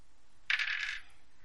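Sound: dice rolling on table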